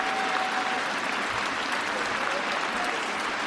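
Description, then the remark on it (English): Sustained, thunderous applause from a huge cricket crowd on their feet at the Oval as Alastair Cook reaches 100 in his last Test match, thousands of claps blending into a dense, steady roar that holds at full strength for the whole few seconds. “And the crowd just giving waves and waves of applause. Everyone on their feet.”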